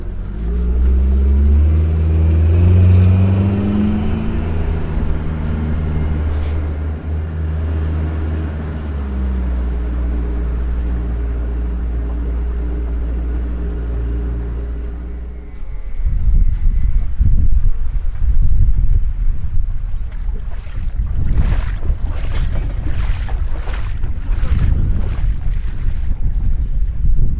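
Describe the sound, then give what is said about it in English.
A motorboat engine drones and rises in pitch as the boat speeds up to get up on plane, then gives way to loud rushing wind and water noise buffeting the microphone as the boat races along. “We're going to get up on plane.”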